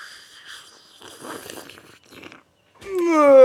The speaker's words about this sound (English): Hold on. Let me get my tea slurp in there.